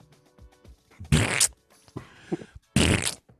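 Fart sounds from the Blazing Saddles scene of cowboys eating beans around a campfire: two loud, raspy farts, each about half a second long, with a softer sputtering fart between them and faint low rumbles and clicks in the pauses.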